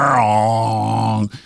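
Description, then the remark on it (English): A person imitates a foghorn with a single long, deep, droning hum. It holds loud and steady for just over a second, then cuts off abruptly, leaving only a faint breathy trace. “But boy, if I had one, it would be a foghorn sound effect.”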